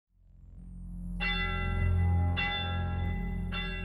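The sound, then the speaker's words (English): A deep church bell mounted on top of a mansion in Stalybridge rings for the first time, around midnight on October 29th, 1909. It sounds three slow, resonant strikes, each new chime arriving over the lingering hum of the last, with a heavy low drone sustained throughout. “On October 29th, 1909, at around midnight, the bell chimed for the first time.”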